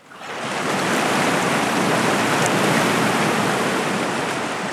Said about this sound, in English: On that night, I walked down to the river on the edge of campus, seeking complete solitude. I've always been drawn to the sounds of water, whether they be from environmental spaces, from a raining showerhead, or even running through pipes.